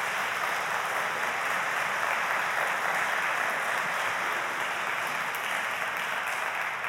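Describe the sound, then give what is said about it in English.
A crowd claps steadily for about seven seconds, a dense, even patter of many hands at a constant, fairly loud level with no voices over it, celebrating a Pace Academy team winning the Georgia High School Sports Association 2A state championship for track and field. “You can clap for that.”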